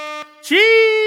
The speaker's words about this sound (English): Wait, is this the air horn?